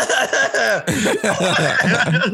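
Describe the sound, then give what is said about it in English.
Someone in church during mass coughs deliberately several times in quick succession, loud, the forced coughs mixed with a bit of stifled chuckling. “But when someone coughs, someone else coughs.”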